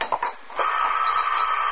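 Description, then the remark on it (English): A telephone rings, a couple of short clattering bursts giving way to a steady, continuous mid-pitched ring that holds loudly to the end, with no voices. “I'm not going to answer this phone!”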